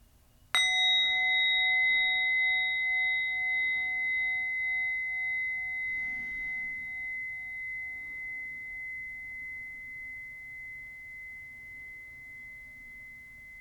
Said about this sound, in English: Now we'll end this meditation by inviting the bell, and I invite you to take 3 deep breaths.